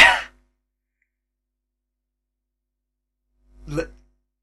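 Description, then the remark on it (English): Two short, separate coughs from a man, one sharp and loud at the start, then a softer, lower one a few seconds later, with silence in between. “I thought he was deliberately coughing.”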